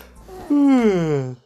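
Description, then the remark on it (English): A single quick yawn: a breathy intake followed by a loud, drawn-out voiced sigh that slides downward in pitch and fades after about a second. “Quick yawn there”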